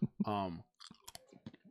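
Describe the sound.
Someone munches pretzels: a brief voiced hum, then a quick series of sharp, dry crunches and crackles in an irregular chewing rhythm, fairly soft overall.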